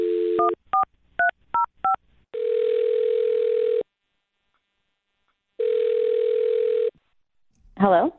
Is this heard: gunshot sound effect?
no